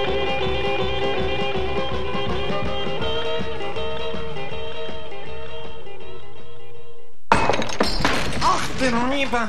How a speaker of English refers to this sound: All my railroad alchemist's equipment, my work, my secrets being smashed to smithereens.